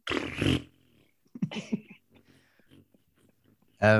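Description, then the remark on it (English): A voice imitates a long fart: a loud raspy blast, then a drawn-out stretch of sputtering, wobbling blown noises, ending in another short, loud burst. “And he was like, it's the longest fart I've ever heard. It was literally just like.”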